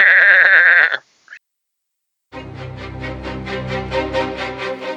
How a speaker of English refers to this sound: But we'll let the goats say it themselves.